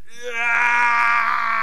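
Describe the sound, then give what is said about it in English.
A voice imitates the slow-motion scream of Bolo Young's character in the film Bloodsport: one long, loud, drawn-out wail that rises in pitch at first, then holds a steady, droning tone. “Well, it's great because it's a slow motion scream.”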